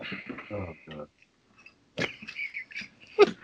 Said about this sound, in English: Yeah, that's a good thing to say after you sneeze.